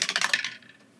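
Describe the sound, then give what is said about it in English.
A die rolled for a wisdom saving throw in a tabletop role-playing game clatters across a hard tabletop in a quick burst of sharp clicks that fade as it settles, landing on a natural 20; fairly quiet, with no voices. “Natural 20. I think she made it. I'm not going to use this dice anymore.”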